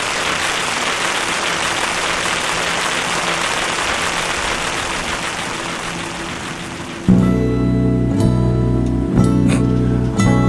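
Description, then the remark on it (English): A steady, dense hiss of rain fills the first seven seconds, then cuts abruptly into tonal music with sustained notes and occasional percussive hits. “That transition was beautiful. Rain.”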